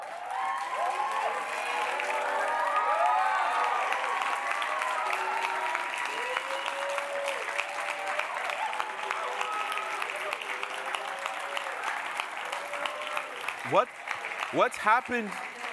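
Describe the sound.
An audience claps steadily for about fifteen seconds to congratulate people standing up who are about to be baptized, a dense wash of applause mixed with cheering voices, with a few sharp rising whoops near the end.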